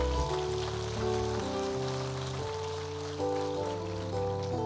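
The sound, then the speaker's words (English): A steady wash of applause from a church audience, dense and even, for Dr. Cofield and First Lady Tori Cofield, runs beneath sustained organ chords that shift pitch every second or so, with no talking over it. “May we give them a round of applause.”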